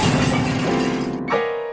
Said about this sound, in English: The ever-grumpy creature defiantly sprang right back up, only to have the vase come crashing down on his head.